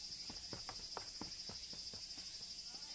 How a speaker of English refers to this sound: Yeah, that's kind of a little bit more abstract, but more just like you hear the crickets. In the back. There's all these like bugs in the background. Just kind of, and it gives you this real sense of summer.